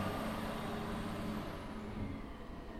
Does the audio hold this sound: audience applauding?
no